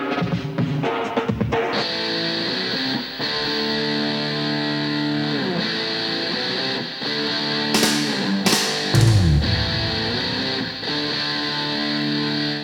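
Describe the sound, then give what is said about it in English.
Two heavily distorted rock guitars, one panned left and one right, ring out in thick, sustained chords washed in reverb, with a dense buzzing tone and a few sharp, noisy bursts partway through. No voices. “Two heavily distorted guitars, one panned left, one right.”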